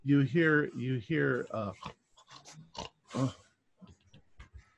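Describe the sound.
During a tabletop role-playing game, someone imitates with their voice a character heavily snoring inside a room: four loud, rough, guttural snorts in a steady rhythm, then quieter breathy snuffles and small clicks trailing off.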